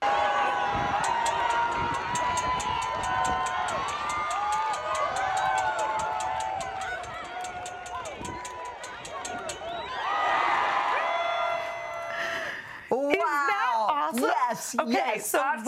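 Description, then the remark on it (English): A crowd of hundreds cheers at the Barton Springs pool as a scared little boy gets up on a diving board, a dense, steady roar of many voices with a regular pulse of rhythmic clapping, swelling near the end into loud, high-pitched shrieks and whoops. “It sounded like a sporting event.”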